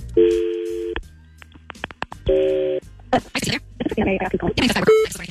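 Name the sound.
telephone call ringing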